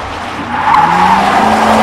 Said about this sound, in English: That truck almost hit us. Why was it even speeding in the first place? It's a fucking ice cream truck. Can ice cream trucks even go that fast?